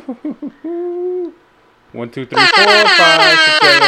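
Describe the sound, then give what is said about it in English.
Short vocal bursts give way to a steady horn blast, then after a brief pause a loud flurry of rapid, repeated air horn honks fills the rest: twelve air horn blasts, counted one to twelve. “12 air horns, 12 months out the year.”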